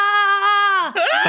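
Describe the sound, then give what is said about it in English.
A voice imitates a woman's loud, high-pitched screech amid yelling: a sustained, strained shriek that holds steady, dips, then breaks into a rough, wavering wail for just over a second. “At one point, she was literally screeching.”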